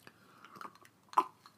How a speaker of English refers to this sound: I need to sip some water.